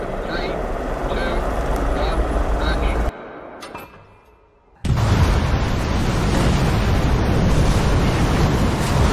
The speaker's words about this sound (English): That's fire. Is there a flame? Is it like a pyro thing that happens here? Yeah. Whoosh, like flames shooting.